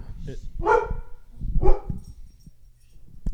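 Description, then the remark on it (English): A dog barks twice, about a second apart, with loud, sharp harmonic barks over a low background rumble, then it goes quiet apart from faint shuffling noises. “You gotta love dogs, you know.”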